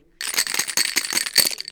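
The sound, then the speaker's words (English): Dice rattle rapidly inside a cup, shaken for a demonstration of Pai Gao, a table card game, a dense run of bright clicks and clatters shaken steadily for well over a second, with no voices. “Shake the dice, please.”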